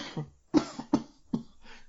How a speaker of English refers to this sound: Sorry, I haven't got the corona cough. Sorry, guys. Hang on. Oh, that's okay. You know, everybody gets really paranoid when they hear somebody cough.